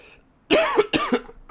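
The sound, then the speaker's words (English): Two harsh, loud, raspy coughs in quick succession from a person who is a little sick, with a brief pause between them and another starting at the very end; no talking. “Sorry for the coughing during the pod.”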